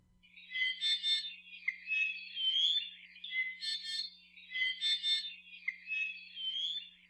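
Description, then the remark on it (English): An i'iwi, an endangered Hawaiian honeycreeper with bright red body feathers and black wings and tail, sings a continuous run of varied high phrases, mixing squeaky whistles with harsh, buzzy notes in repeated bursts, with a steady faint low hum underneath and no talking. “The i'iwi sing a huge repertoire of songs”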